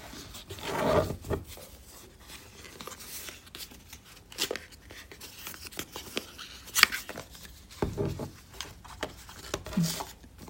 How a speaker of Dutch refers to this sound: Ik ga eerst even de doos verder uitpakken. Dus we hebben de telefoon.